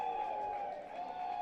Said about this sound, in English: And again, some sarcastic applause for the call of didn't go around, because that's a call earlier that got head coach Lane Burrows thrown out.